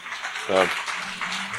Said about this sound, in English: Oh, yeah, there we go. A round of applause there.